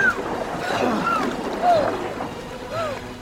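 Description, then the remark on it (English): Turbulent river water rushes steadily and loudly around a canoe, a continuous churning roar, while voices shout faintly over it in brief calls. “Don't let the river grab you! Head for that eddy!”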